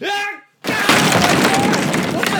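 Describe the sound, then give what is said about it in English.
A voice calls out, then after a brief silence a chair is slammed down with a sudden heavy crash, giving way to a loud, sustained wash of roaring noise. “Oh, yeah, it's a chair!”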